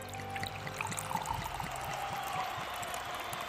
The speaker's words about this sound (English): As Scarlet was pouring herself a drink